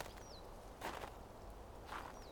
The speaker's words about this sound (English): The piney fresh scent of the trees around me fills my nostrils, and the fresh, undisturbed snow crunches and compacts under my feet. It's therapeutic to listen to my rhythmic footsteps.